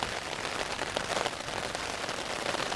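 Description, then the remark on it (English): Rain and hail drum steadily on a tent pitched during a long-distance hike, a dense, continuous patter with scattered sharper taps over the full stretch and no voices. “So you're hearing the sound of rain and hail hitting my tent.”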